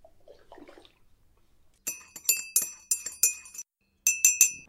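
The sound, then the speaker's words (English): Bright clinks of cups knocking together, about nine ringing taps in two quick bursts with a short pause between, after a brief faint rustle at the start. No one speaks. “Put the kettle on and I can tell you all about it.”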